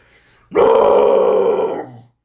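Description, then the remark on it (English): A person lets out a single loud, drawn-out growling roar in imitation of a bear, lasting about a second and a half, rough and throaty, then fading off into quiet. “Is that like a mastiff? What's a mastiff? Like a big dog? I was going for a bear.”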